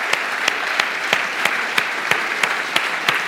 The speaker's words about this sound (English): That's a weak clap. That's weak. Let's thank them for all you do.